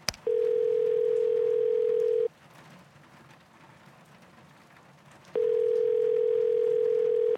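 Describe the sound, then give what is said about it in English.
A steady landline dial tone hums for about two seconds, cuts out to a quiet pause, then returns just as loud, with faint rain-like hiss in the background. “Yeah, I'm going to try the phone again, okay?”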